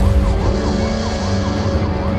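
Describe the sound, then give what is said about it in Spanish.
Sirens wail steadily, their pitch sweeping up and down in overlapping cycles over a deep, rumbling low drone. The sound is loud and continuous, with no voices. “Hasta que un día comenzaron a sonar las sirenas y la arena bajo el suelo temblaba como si la aplastaran.”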